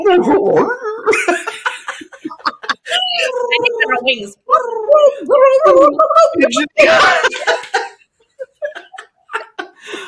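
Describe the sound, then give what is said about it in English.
A person vocally imitates a turkey while dancing like one, making warbling, howling gobble sounds in short bursts, with laughter mixed in and a brief pause near the end. “It's like a little howling turkey.”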